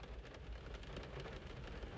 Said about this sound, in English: Look, the rain has kind of stopped.